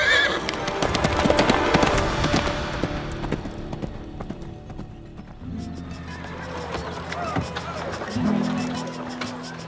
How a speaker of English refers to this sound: He spurred his horse, galloping to catch up with the soldiers and his prisoner.